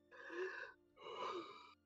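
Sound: imitated labored gasping breaths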